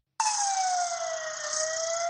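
An ambulance siren wails loud, starting abruptly and holding a steady tone that slowly slides lower in pitch, with no voices over it.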